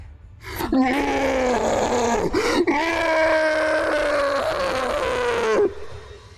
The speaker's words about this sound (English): It falls to the ground. And you hear... a horrific roar.